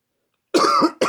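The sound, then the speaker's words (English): A sharp cough bursts out after a moment of silence, followed quickly by the start of a second cough, loud and harsh with a rough, throaty edge. “Cut out the cough there”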